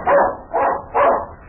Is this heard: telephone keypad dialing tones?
no